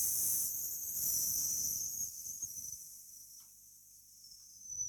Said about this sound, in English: So I'll just do two of them in a row so you can kind of hear. So I'm going to inhale through my nose and hiss out through my mouth.